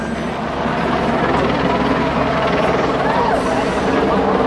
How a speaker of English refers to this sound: And we've got a helicopter flying overhead, so we've got lots and lots of security here.